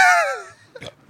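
A single sharp sneeze bursts out loudly at the start and trails off into a short voiced tail, followed by a brief faint sound from another person.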